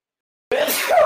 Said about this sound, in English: I'm going to sneeze in 2 seconds.